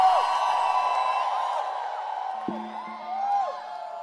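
A church audience shouts and screams together in a dense, sustained roar of many overlapping voices, loud and continuous throughout, with a few rising whoops standing out near the end.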